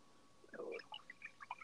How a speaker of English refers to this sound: I'm pouring myself a little more wine, okay.